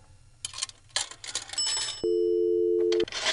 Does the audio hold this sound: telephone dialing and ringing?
yes